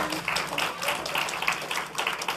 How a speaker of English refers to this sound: Somebody in this house, give God a good hand clap of praise.